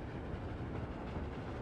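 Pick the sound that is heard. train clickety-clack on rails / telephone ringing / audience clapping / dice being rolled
train clickety-clack on rails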